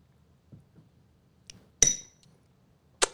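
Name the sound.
shot glasses clinking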